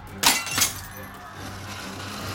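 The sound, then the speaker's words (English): A monster's claws smash a glass window of an inn in two sharp, bright crashes about a third of a second apart, followed by a quieter, lingering rumble as the shattering fades. “The claws smash into the window and claw the side of the inn.”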